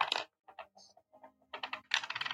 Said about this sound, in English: Well, the dice are on the pitch and it's Preston to go first. In go the dice. Rolling for Preston.